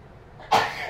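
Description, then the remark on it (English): A single sharp sneeze bursts out suddenly after a quiet moment, loud, with a breathy, noisy tail that fades slowly. No one speaks. “Bless you.”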